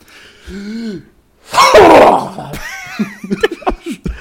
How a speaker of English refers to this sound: I think if you're alone in the privacy of your own home and no one can hear you, mm-hmm. a big loud sneeze can be very satisfying. Oh, sure. Like a big, like, yeah, when you don't have to hold back.